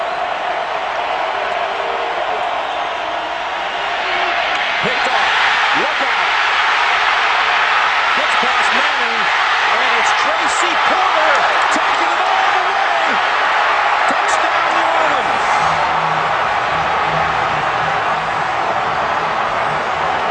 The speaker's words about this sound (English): First, that is one loud crowd reaction to a play for a Super Bowl. That's pretty underrated because, you know, the Super Bowls are usually pretty corporate.